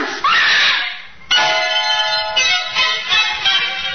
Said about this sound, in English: The mother had reason to scream.